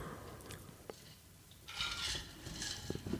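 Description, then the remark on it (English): Water is poured into a glass after a few light clinks, the pour a steady, bright splashing hiss that swells for the last second and a half, with no one talking. “All right, let me have a glass of water.”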